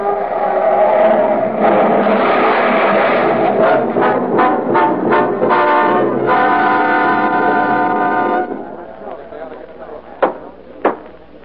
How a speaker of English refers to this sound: With an unconscious man at the wheel, the car glides downward. At the bottom of the grade, a traffic light blinks red at a crossroad. The car hurtles toward it faster and faster, then swerves madly into the cross traffic.